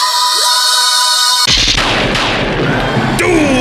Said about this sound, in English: That is your ludicrous speed round, and doom is the sound of the Six Gun Gorilla's gunfire as seen in this week's issue of Six Gun Gorilla number 6. It's a really big gun.